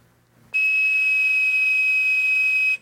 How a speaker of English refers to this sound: Yeah, you would blow the whistle, and it hit a certain frequency and gave you a dial tone. Yeah, it gave a pure 2600 hertz tone, and let's hear how it sounds.